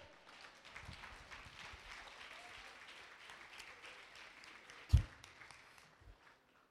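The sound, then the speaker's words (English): An audience claps together in a steady, dense wash of many hands, with one sharp louder clap near the end before the applause thins out and fades. “Get a Lord a hand clap.”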